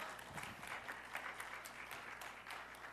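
An audience applauds steadily, a dense, even patter of many hands clapping at once with no voices over it, holding at a fairly quiet, constant level throughout.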